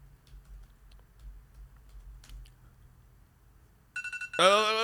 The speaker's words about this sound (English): I'm going to give you that one. You shouted it out right as the alarm was going off.